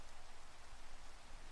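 Steady rain falls in a continuous, even hiss across the whole short stretch, with dense patter and no voices or other sounds.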